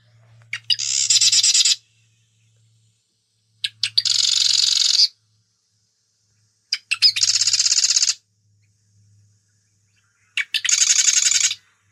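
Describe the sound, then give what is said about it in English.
Loud territorial bird song in four separate bursts, each a rapid rattle of many notes packed into about a second and a half, with short pauses between bursts and no talking. “they're great birds, and yeah, they've got quite the voice. So I'll play that for you now.”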